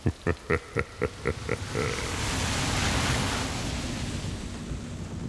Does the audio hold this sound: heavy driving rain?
yes